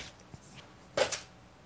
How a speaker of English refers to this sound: I rolled really low on the damage, but as you might have heard... It was like 20 dice. It was a bunch of dice.